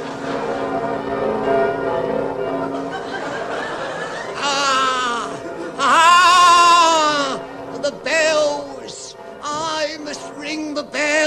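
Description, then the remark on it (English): A voice imitates church bells ringing with long, wavering sung tones that swell and fall, followed by shorter choppy bursts near the end, fairly loud. “Ring the bells. That's how my life is spent. But I love the sound of the bells.”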